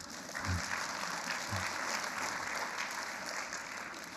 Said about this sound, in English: Yes, you can clap and praise God.